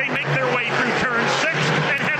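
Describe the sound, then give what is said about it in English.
Race cars roar past at full throttle coming downhill off turn five, Christopher Bell leading ahead of Reddick, their loud, continuous engine whine rising and falling in pitch as several cars sweep by in quick succession. “Here they come now off turn number five, downhill, full song now for Christopher Bell.”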